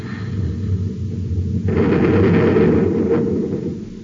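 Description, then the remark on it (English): A steady low rumble gives way to a loud, roaring blast of both atom cannons firing and a ship exploding, a broad, crackling burst that swells for about a second and a half before fading back into the drone. “stand by to fire both atom cannons.”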